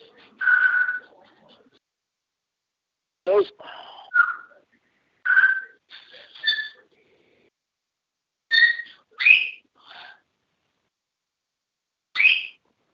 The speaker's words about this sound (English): What's that noise from, I wonder? I think I know what that is. I got to put mute on my phone because I've got parrots.